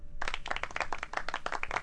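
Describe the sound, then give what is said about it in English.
A brief burst of soft, polite golf clapping, a small group patting their hands in quick, uneven claps for under two seconds with no one speaking. “Anyhow, give them a little double whinny golf clap.”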